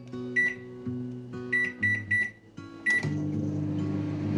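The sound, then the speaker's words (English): A microwave oven gives several short, bright keypad beeps, then starts heating a meal for 4 minutes with a steady humming drone that carries through to the end. No one speaks. “Alright, so now I just get this, put it in the microwave.”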